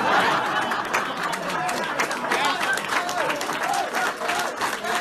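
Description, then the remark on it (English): Sustained audience applause after Eric Holder says at a political speech, "When they go low, we kick them": a dense, steady wash of clapping with crowd noise and a few scattered voices mixed in, holding at a fairly even loudness throughout. “And the applause for that goes on for a while.”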